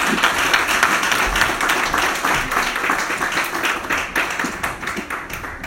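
A church crowd applauds steadily to welcome speakers being brought up, many hands clapping in a dense, sustained patter that holds at an even, fairly loud level for several seconds with no voices standing out.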